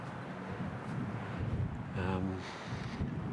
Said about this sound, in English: This breeze creates a ripple effect across the water. It's running really fast, the river. Much faster than the Thames,